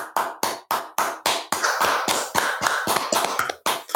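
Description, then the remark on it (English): Hand clapping alone, a standing ovation for a team's first win, starting as a steady run of sharp claps, then thickening into quicker, overlapping applause before settling back into a few separate claps at the end. “I'm not trying to like put Steph down or anything or be an asshole for clapping for her first win”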